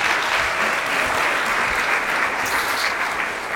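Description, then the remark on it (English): A crowd at Grace Assembly of God in New York applauds steadily as a pastor comes up to speak, a dense wash of many hands clapping at an even, fairly loud level throughout, with no voices standing out. “That was the first time I got applause for coming up here, so that's a big win.”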